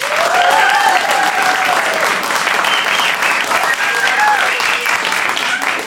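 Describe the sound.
A large audience at a debate show claps steadily and loudly for about six seconds, voting for KT Extinction's argument. The applause is a dense, unbroken patter of hands with a few raised voices and cheers mixed in.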